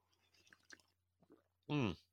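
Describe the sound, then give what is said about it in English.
Quiet mouth noises: small wet clicks and a soft slurp of someone sipping coffee, followed by a short, louder voiced exhale like a satisfied sigh. “And remember how I said at the beginning, I'm going to have another sip of coffee and then I want to touch on this.”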